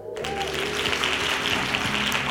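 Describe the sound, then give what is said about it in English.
Dense, steady hand claps run through a music track with low sustained tones underneath, fairly loud and continuous for the whole stretch, with no voices. “Finally, hand claps.”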